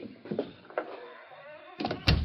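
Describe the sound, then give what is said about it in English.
An unlocked door creaks and rattles open, with a few scraping clicks before a heavier thump near the end. No one speaks. “Door ain't even locked.”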